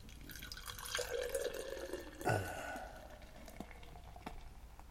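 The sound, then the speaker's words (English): A light straw-colored Pilsner beer pours into a glass with a steady liquid trickle and a brief splashy gurgle midway, then a soft fizzing hiss as the stream settles and a large foamy white head forms, fairly quiet. “All right, we're going to pour.”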